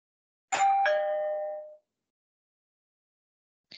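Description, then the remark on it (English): A two-tone doorbell chime rings once as someone is at the door, a bright ding followed by a lower dong that rings out and fades, then silence until a brief onset of another sound at the very end. “Suddenly, the babies heard someone at the door.”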